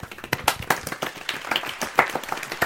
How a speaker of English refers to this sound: So, Edison steps out, and led by Hamid, I believe it was, there's a polite round of applause.